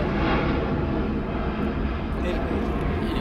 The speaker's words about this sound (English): Fuck the plane, though. Yeah, that shit low as hell. Right, why is it so low?